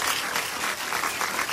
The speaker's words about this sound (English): Have you got your sound effect? I've got my applause. What, you want to compare them, do you? All right, this is mine. Have a listen to this.